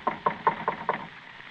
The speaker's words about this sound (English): Yeah, we got to let Doc know we're here some way or other. I reckon it won't hurt nothing to tap on the door sort of gentle.